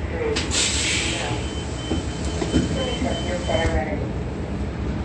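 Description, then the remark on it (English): City bus number 1364 rumbles while a long airy hiss, like the doors opening, runs for a few seconds, with faint murmured voices and shuffling as someone steps off at Holton Euclid in Ontario at 7:02 p.m. “and I am getting off now at what is Holton Euclid in Ontario. This is POC. This is again bus 1364.”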